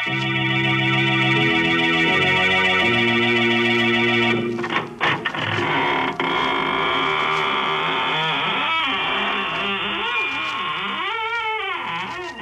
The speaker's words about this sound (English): This is your horror host at the squeaking door of the inner sanctum.